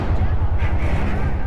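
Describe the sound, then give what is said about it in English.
A loud, continuous roar with a deep, throbbing low rumble that pulses steadily beneath a broad hiss, like a rocket engine firing up and holding at full thrust. “We have ignition sequence start. Ignition. The engines are on.”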